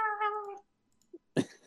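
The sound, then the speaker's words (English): Cats in an alley: a drawn-out, wavering cat yowl lasting about half a second, then a pause and a short, harsh screech or hiss, with no talking. “They were cats, confirmed. Sorry, it's just cats.”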